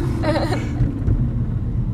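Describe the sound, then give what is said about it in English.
Steady low rumble of a moving car with a rough scraping drag underneath and a brief squealing screech near the start, continuous and fairly loud throughout. “There's something dragging on the ground.”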